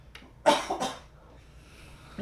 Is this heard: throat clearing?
yes